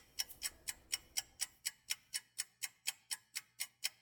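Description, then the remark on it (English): A steady clock-like ticking, about fourteen sharp ticks at an even pace of roughly three or four per second, clear with no voices. “The ticking has been getting progressively louder, so a lot of people got out of my way pretty sharpish as I moved through the station.”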